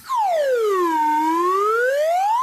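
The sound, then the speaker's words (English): A slide whistle glides smoothly down in pitch and then back up, one continuous, fairly loud, airy tone lasting a couple of seconds with no voices over it. “That's, everyone should know, I'm using a real slide whistle here.”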